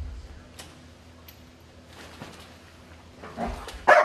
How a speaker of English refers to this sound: In the Mondio ring, the dog needs to locate the helper who's hidden on a training field and do a bark and hold on the helper. You will see Rush find the helper here.